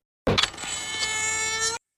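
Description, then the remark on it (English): A camera shutter snaps with a sharp click, then a steady, high-pitched mechanical whir runs for about a second and a half before stopping abruptly. No one speaks. “That sound when the shutter clicks of the camera.”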